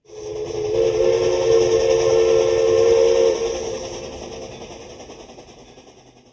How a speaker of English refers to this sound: But I still remember that whistle sound blowing in my sleep.